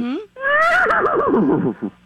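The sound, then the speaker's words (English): A person's voice imitates a horse neighing, a loud, wavering whinny that rises then trembles downward for about two seconds, with a short breathy snort at the end. “Now, if you were the front end of the horse, what kind of sound would you make if you were the horse?”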